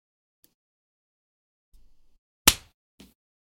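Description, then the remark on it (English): One sharp, loud hand clap made at 40 seconds, with a brief ringing tail, followed half a second later by a softer short knock. A faint low rumble comes just before, and no one speaks. “Let's clap at 40 seconds.”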